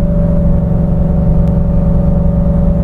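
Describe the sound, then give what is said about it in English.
A truck engine labors steadily at around 3,000 RPM, downshifting on an uphill incline, a loud, deep droning hum with a thin whine riding above it, holding a constant pitch throughout with no voices. “So it wants to upshift to save fuel, and then as soon as I go to accelerate or I see any kind of incline in the hill, it's downshifting.”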